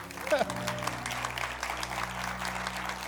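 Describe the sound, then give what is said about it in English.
An audience bursts into steady applause for graduates as they are announced, many hands clapping in a dense, even wash that holds for about three seconds, with a brief voice heard at the very start. “Okay, did I need to say let's hold our applause to all of the graduates have been announced?”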